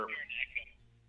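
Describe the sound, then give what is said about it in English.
Thin, tinny phone-line audio from a caller's echoing phone on a call-in line, a hollow, echoing smear of voice-like sound that trails off within a second, leaving a faint low hum. “He's on the phone line. And your phone's echoing.”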